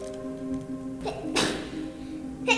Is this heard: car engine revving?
no